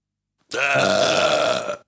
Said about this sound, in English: Wow. All right. That was painful. My belch.